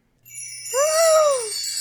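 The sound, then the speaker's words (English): Wind chimes ring with a shimmer of high, overlapping tones that hang and sustain, while a lower gliding tone rises and falls beneath them midway before fading. “Listen to the wind chimes.”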